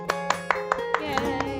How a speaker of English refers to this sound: Yay, Haunted Mansion. Applause.